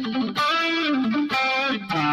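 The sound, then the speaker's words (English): Distorted electric guitar plays short legato phrases, notes stepping up and down through hammer-ons and pull-offs with brief gaps between phrases, loud and sustained with no talking. “Learning how to use hammer-ons and pull-offs.”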